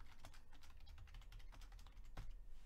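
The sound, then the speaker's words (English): Rapid, uneven typing on a wireless computer keyboard, a dense run of light plastic key clicks with no voices, one slightly harder keystroke near the end. “Fucking wireless keyboards, man.”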